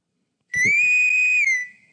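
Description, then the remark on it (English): A single loud starship whistle from the original Star Trek: a bright, steady tone that swells up briefly, holds for about a second, then fades out with a short ringing tail. No voices. “Yeah, that's the Star Trek whistle.”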